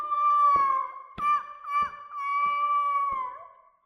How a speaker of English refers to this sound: The occasional sound of a gull overhead.